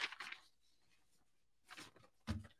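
Faint, short scratchy strokes of a pen on paper, a few separate bursts with quiet gaps between them, with no talking, as someone writes down a prediction of a quarterback's passing yards.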